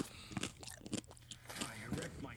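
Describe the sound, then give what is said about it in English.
Close, loud chewing and crunching right against the microphone, with repeated sharp crunchy bites and wet mouth sounds over a couple of seconds. “Just chew right into that microphone.”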